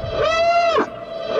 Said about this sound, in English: But all right, we'll just do a tiny little siren here. Tiny little siren.